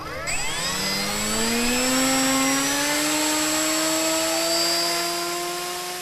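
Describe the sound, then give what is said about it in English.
Drone propellers spin up: a mechanical whir climbs steadily in pitch over several seconds, then settles into a loud, sustained buzzing drone with a thin high whine layered on top. No one speaks. “Okay, well, I'll have you stand up right over here so you're not in the plane of propeller, just in case something happens.”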